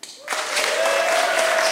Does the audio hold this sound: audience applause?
yes